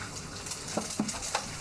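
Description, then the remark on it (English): Eggs frying in a pan, one cracked for each person, a steady sizzle with a few soft utensil taps and scrapes mixed in, and no voices. “Alright, so I'm gonna crack an egg for each of us and start them cooking, and then while those are frying, I'm gonna start assembling so they can come off and go straight on.”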